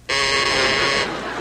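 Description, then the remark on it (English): A quiz contestant's buzzer sounds once, a loud, bright, harmonic-rich tone held steadily for about a second before cutting off into a low murmur. “Please use your bells.”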